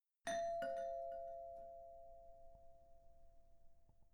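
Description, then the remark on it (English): A house doorbell, rung a second time after no one answers, chimes with two quick struck notes, then a clear bell tone that hangs and slowly fades over several seconds. “No one answers when I ring the doorbell, so I ring it again and wait.”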